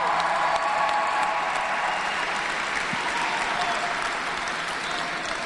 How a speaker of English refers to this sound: How about a round of applause for a Warrior?